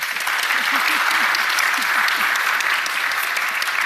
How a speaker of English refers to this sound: So I'm joined here by our fabulous panel, who we will get to know very well in a moment. But for now, can we just give them another huge round of applause for joining us here today?